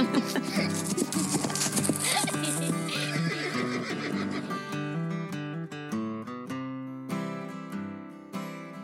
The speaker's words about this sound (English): Horses certainly are amazing animals.